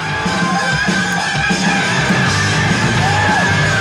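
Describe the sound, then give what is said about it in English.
A loud, sustained high-pitched metal vocal scream from a Metal Method vocal power lesson, harsh and distorted, held steadily for several seconds over a dense, noisy wash of sound. “Just like you can't scream.”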